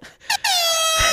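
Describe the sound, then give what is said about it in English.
A loud, bright air horn sound effect from a mixer's built-in sound cues: a short blip followed by a sustained blaring honk whose pitch sags slightly, heard alone with no talking. “Air horn. Do an air horn.”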